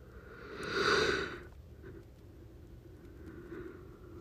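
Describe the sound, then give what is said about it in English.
A single loud, drawn-out yawn swells and fades over about a second, followed by quiet room noise with faint breathing. “Damn, that was yawn.”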